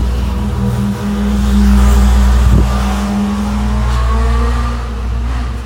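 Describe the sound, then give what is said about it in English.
A car engine rumbles as a vehicle drives past on a neighborhood street at an intersection in the early morning, its low hum swelling louder for a few seconds and then holding steady. No one speaks. “I was out here before any cars were on the street, kind of just standing in the middle of the intersection here in my neighborhood, and admiring the fact that no cars were on the street.”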